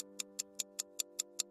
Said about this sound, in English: the ticking of the clock, or worse, the ticking of a bomb.